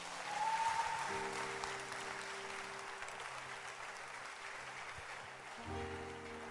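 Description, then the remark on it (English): An audience claps for Jesus in sustained applause, a dense, steady wash of many hands clapping, with a low sustained organ-like tone underneath and no one speaking. “Clap for Jesus.”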